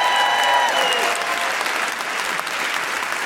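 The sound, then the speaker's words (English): A comedy show audience in Manchester applauds the evening's sign language interpreter steadily, a dense wash of clapping that holds at a fairly even loudness for a few seconds, with faint tonal traces early on. “Can I have a big round of applause”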